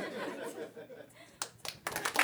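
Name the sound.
audience applause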